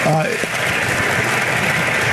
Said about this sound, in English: And actually, can we give them a round of applause for putting this all together? I mean, what a great job by everyone.